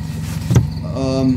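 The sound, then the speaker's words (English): A parked car idles in a remote part of a forest with a low, steady rumble, then a short thump is followed by the rising electric whine of a power window motor as the window rolls down. “They park their cars in anticipation of a Sheep Squatch sighting. In fact, here's some right now.”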